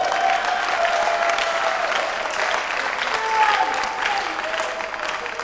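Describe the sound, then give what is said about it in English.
A church audience applauds for the Lord during a sermon, with steady, dense clapping that holds an even loudness throughout, with a faint sustained tone drifting underneath. “Oh, you didn't clap for the Lord.”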